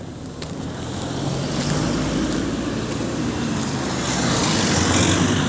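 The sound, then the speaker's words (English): Steady road rumble with a low engine drone and broad hiss as two cars pass on a bend of a country road, swelling slightly as a vehicle seems to draw nearer. No one speaks. “Oh, man, this is literally as we've come into this bend, there's a car. Oh, Christ. Two of them.”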